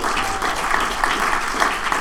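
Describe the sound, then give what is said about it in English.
A crowd of married people in the audience claps steadily in a dense, even wash of applause that holds for the full two seconds without a break, with no voices rising above it. “By applause, how many married people in the room?”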